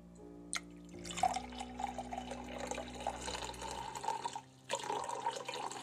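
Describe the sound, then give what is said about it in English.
Water filtered through a Brita filter pours steadily into a glass, a bright continuous splashing trickle with small dripping accents, briefly pausing near the end before resuming. No voices. “This is the sound of the filtered water spilling into the glass.”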